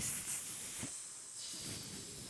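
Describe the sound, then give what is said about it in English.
A person hisses like a snake, a steady breathy hiss lasting a couple of seconds with a brief dip in the middle, fairly quiet, with no talking. “That's, I mean, now you did it really good, so I'm thinking that you are. Snake.”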